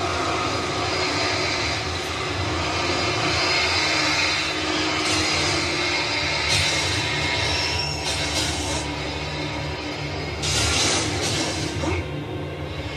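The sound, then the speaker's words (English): A generator engine, started by pulling its ripcord, runs continuously with a loud, steady mechanical drone and rumble, a few brief hissing surges rising above it. No one speaks. “Ah, to that generator. Get it started. Pull on the ripcord.”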